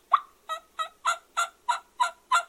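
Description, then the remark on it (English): A split V turkey mouth call sounds eight raspy, whiny notes in a steady, evenly spaced series, fairly loud, imitating a hen turkey's yelps with no talking. Tongue pressure makes the whistle and whine, and dropping the pressure lets the top reed flutter. “A little bit of tongue pressure to get that whistle, that whine. And drop the pressure down, which activates the top reed, allows the top reed to flutter,”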